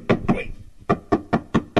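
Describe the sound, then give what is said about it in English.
Sharp knocking on a door: two quick raps, a short pause, then five evenly spaced knocks in a steady rhythm, with no talking. “So it'd be like the vampire would look around to kill somebody, and I was like, they'd have to knock on.”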